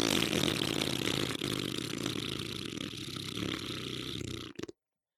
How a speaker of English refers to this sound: You could call a fart a Boomsies. Oh, that is a big Boomsies.